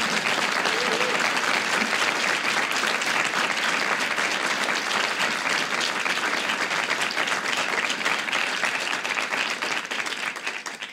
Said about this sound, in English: Well, for those of you who are here live in our theater, how about a round of applause for Molly Hemingway?